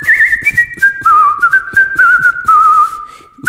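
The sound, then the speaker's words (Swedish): A person whistles a meandering tune while looking something up on Spotify, the pitch wavering and gliding through a slow melody for a few seconds, with faint clicks and rustling underneath. “Jag kanske kan vissla lite under tiden.”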